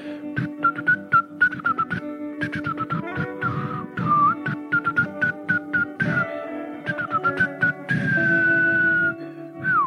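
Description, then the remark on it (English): A breathy, flute-like whistled tune of short notes and a few sliding held tones, made by blowing into an arm and playing it like a flute, over steady low background noise, with no one speaking. “And you march through the forest, blowing your arm flute.”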